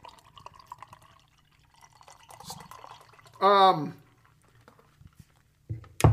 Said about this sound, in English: A real deep golden pour there.